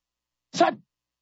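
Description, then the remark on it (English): A single short, sharp sneeze bursts out and cuts off quickly, loud, with silence before and after. “God bless you.”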